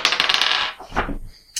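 Dice rolled for an animal handling check clatter and rattle across a surface in a quick flurry of bright clicks, then a few settling taps and one last sharp click, with no voices.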